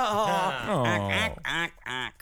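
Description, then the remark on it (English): A person vocally imitates a goose, letting out a loud, drawn-out nasal honk followed by two shorter, sharp honks. “What are your final honks?”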